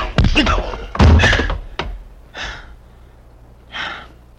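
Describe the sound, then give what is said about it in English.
A table is shoved at someone and shoved back, with a burst of loud, heavy thuds and knocks, then the clatter stops and two sharp, breathy gasps follow in the quiet. “He shoved the table at me, and I shoved it back.”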